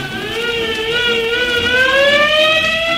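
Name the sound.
fire engine siren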